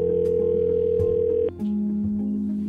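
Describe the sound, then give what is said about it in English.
A steady electronic telephone tone hums from an outgoing call that Unified Police Department detectives placed to an individual. It briefly clicks and drops to a lower continuous tone partway through. No one speaks. “I was initially given this case by my sergeant, who asked me and another detective that was brand new in the unit to call an individual on the phone.”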